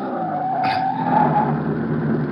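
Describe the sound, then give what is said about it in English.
A sedan brakes hard on a bumpy stretch of road toward a village in Bavaria, its tires letting out a sustained, loud squeal over a low engine rumble, lasting about two seconds with no one speaking. “I slam on the brakes.”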